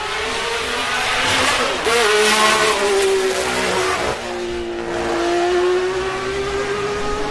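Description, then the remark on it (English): Richie Ginther's Honda Formula One race car screams past, its loud, high-pitched engine whine holding steady for several seconds with small dips and rises in pitch as it passes. “Here comes Richie Ginther's Honda.”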